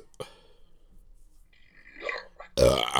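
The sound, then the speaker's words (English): A loud burp erupts near the end, long and throaty, after a stretch of quiet broken only by a sharp click and some faint mouth sounds. “I don't want the vomit coming up. That's why I need the burp.”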